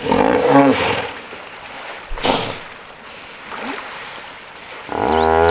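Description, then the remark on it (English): Hippos calling back and forth: deep, rumbling roar-like grunts with harmonic wheezy bursts, several calls overlapping over a steady watery background hiss, ending in a loud, resonant honking bellow. “On this show, we played you hippos talking to each other.”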